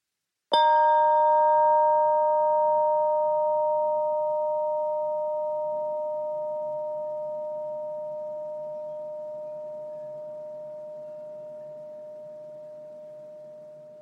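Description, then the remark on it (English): A single mindfulness chime is struck once and rings with a clear, steady metallic tone, its bright overtones dying quickly while the main pitch slowly fades over more than ten seconds, with no talking. “You may want to close your eyes so that you can really hear the chime sound until it's totally gone.”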